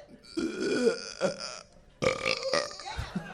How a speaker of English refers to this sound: That sounded like he made a pre-belch noise.